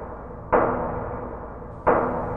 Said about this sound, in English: Doorbell, Mr. Bell. Somebody's at the door. Better open the door in case it's a client.